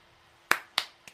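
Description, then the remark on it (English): A golf clap: three soft, crisp hand claps in a slow, even rhythm, the last one quieter than the first two, with no talking. “Golf clap.”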